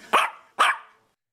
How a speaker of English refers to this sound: The small dog sound effect.